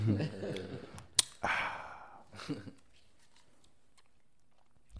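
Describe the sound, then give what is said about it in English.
A quiet slurp of reposado tequila followed by a long, breathy exhale and a softer second breath, then near silence with a faint click or two. “On that note, sip Reposado.”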